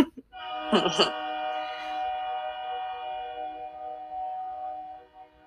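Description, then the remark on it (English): A train passes with a long, sustained horn blast, loud and steady for several seconds, with a brief rumbling burst near the start before the horn tone fades out. “Okay, the train is about to pass, so I'll let that train break happen.”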